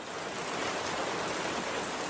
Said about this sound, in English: Even when rain begins to fall, Rover stays put.